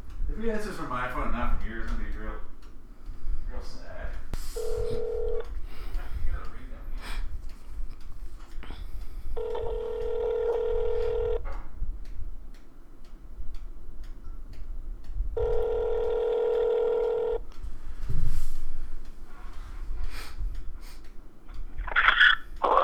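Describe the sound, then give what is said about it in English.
An outgoing phone call rings on the line: a brief tone, then two longer ringback bursts about six seconds apart, heard over a low, muffled background with faint voices and breathing. “He's not going to answer my phone call.”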